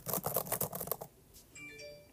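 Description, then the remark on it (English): Quick typing on a Magic Keyboard: a rapid burst of about eight or nine crisp key clicks lasting around a second, followed by a few faint, high electronic beeps. “I know that sounds like a computer. No, I don't. Exactly not. It's just the magic keyboard.”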